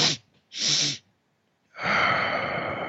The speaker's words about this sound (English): Real-time tools for being able to push back on stress might be double inhale through the nose, followed by a big exhale, repeated two or three times.